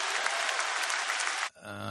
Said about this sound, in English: And he's getting an applause line for that.